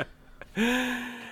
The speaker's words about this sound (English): He's breathing on my neck. He's like really close to the mic and everything.